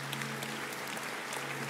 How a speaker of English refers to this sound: Would you guys give a round of applause for these families?